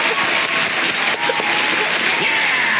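Steady, dense applause with many hands clapping together, filling the whole stretch at an even loudness without pausing or any clear beat.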